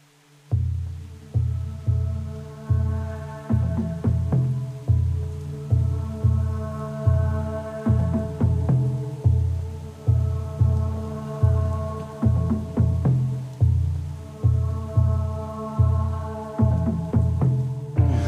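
An instrumental song intro plays with no vocals: a steady, pulsing low bass line drives a repeating rhythm beneath sustained melodic tones and light percussive accents, loud and close throughout.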